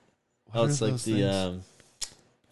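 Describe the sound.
A voice imitates zip ties being zipped up on a railing: a loud, buzzy, ratcheting vocal rasp in two quick strokes, followed by a single sharp click.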